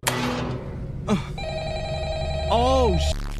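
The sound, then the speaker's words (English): A telephone in a video game rings with a steady electronic tone over background game sounds, with a short sliding warble near the end; a voice briefly speaks at the start. “Oh my God, it's realistic. I gotta answer the phone.”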